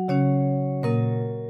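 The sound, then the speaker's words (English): A two-note doorbell-style ding-dong chime, a birthday ding dong sound effect played for a birthday, rings out alone: a bright first strike, then a lower second tone about a second later, both sustaining with a rich, ringing harmonic tail. “Yeah, I think birthday, that's the birthday ding dong for you right there.”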